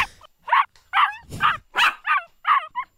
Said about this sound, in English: Oh, that's cute. Intimidating. Sounds like a sad dog wanting to be bought at the pet store or something. That's just depressing.